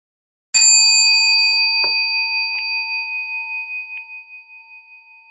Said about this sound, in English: So I'll begin. I'll ring the bell once to start, three times to end.